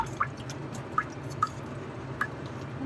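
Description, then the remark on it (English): Truffle spore suspension dribbles over a sapling's root system for inoculation in a few separate drops: four soft, wet plinks at uneven intervals against a low, steady background hum, quiet, with no voices. “The main thing is to pour the suspension evenly over the root system so that there's a good chance of successful inoculation.”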